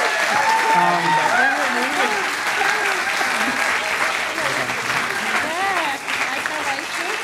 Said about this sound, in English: On that note, can we please have a round of applause for your pro and con teams for tonight?